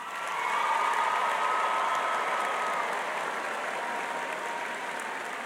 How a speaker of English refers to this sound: Your families, your teachers have invested a lot of their time into you. They deserve a round of applause.